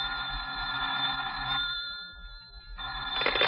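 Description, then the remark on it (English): An old-style telephone bell rings in two bursts, a bright metallic jangle with a brief pause between rings; no one speaks. “You're still slouched there half an hour later when the telephone rings.”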